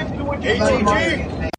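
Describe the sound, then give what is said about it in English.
Inside the moving band tour bus: a steady low engine rumble and road hum fill the space while people talk and chatter, ending in a sudden sharp click. “We're on a tour bus, man. We're on the tour bus right now.”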